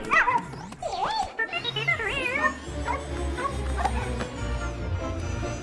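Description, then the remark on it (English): A burst of high, dog-like yips and whiny, swooping barks fills the first couple of seconds, then fades into a steady low hum with faint chirps scattered over it. “Buggles reminds me of my dog.”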